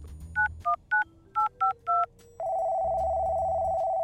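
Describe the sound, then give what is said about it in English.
Six quick touch-tone beeps as a phone number is dialed, followed by a steady electronic tone from the line that holds to the end. No voices. “As for you, Professor Mittens, I'll just make a quick call on my caller's phone.”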